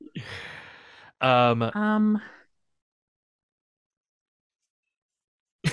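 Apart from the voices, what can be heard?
burp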